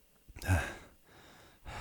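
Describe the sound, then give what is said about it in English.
Heavy, ragged breathing: a loud, rasping inhale-exhale that trails off, followed by another breath starting at the end. No talking. “Heavy breathing.”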